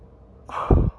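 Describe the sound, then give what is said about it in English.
A single yawn: a breathy intake that swells into a low, voiced exhale and fades after about half a second, with no talking around it. “I'm sorry, you guys. I always start yawning.”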